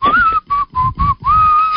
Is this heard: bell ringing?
no